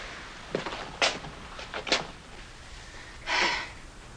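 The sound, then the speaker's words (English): Drawers are yanked open in a series of short, sharp wooden knocks and jolts, then one longer scraping drag as a sticky drawer is forced out, with no talking. “All the drawers stick.”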